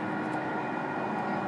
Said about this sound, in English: Well, here comes my train.